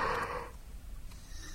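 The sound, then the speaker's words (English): A breathy yawn-like exhale rushes out for about half a second, then fades into a quiet low rumble, with no talking. “When you yawn, there's a noise.”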